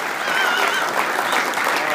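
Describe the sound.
Steady, dense applause from an audience fills the whole two seconds, a continuous crackle of many hands clapping at an even, fairly loud level, with a faint murmur of voices underneath.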